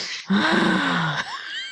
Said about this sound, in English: Up next on Chaotic Flatulence, ASMR sniffing